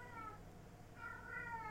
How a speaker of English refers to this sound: I gotta get Wendy to save me from this cat. Meow. Can you hear it?